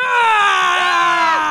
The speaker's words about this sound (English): Calm your scream box down